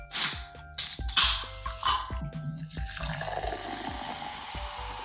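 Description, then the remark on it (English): A few sharp, hissing bursts as a fridge-chilled can of ruby red grapefruit seltzer is cracked open, followed by a steady fizzing pour into a glass, clear with no talking. “Okay, so my first experience, because I poured it into a glass, was the feeling of like gas hitting my nose.”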